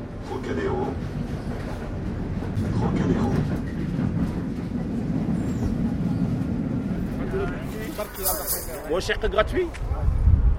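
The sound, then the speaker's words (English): A Paris metro train rumbles steadily along the rails, a loud low roar, with a burst of high metallic squealing near the end as it brakes; faint indistinct voices may sit underneath. “When you get out of the metro at Trocadéro, the view of the Eiffel Tower is really breathtaking.”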